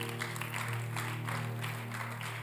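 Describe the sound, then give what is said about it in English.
A large audience claps steadily together unto Jesus during a sermon, the dense patter of many hands filling the room over a low, sustained droning tone, with no voices standing out. “I thought you'd clap unto Jesus.”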